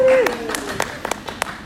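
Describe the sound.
A brief, thin round of applause: scattered handclaps, roughly seven sharp claps at an uneven pace, following a short sung or drawn-out voice that trails off at the start.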